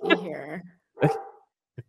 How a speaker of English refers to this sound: I might have to go investigate. She doesn't usually bark unless there's like something to bark at.